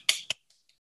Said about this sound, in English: Sony has achieved a milestone with the PlayStation 5. It has finally crossed the 20 million units sold mark. Let's clap it up.